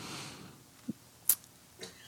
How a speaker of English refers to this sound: Our little dog just sneezed. She's not little, but anyway.